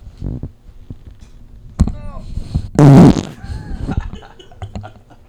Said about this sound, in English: Dude, that's like this might be a podcast record for farts on mic. Farts on mic.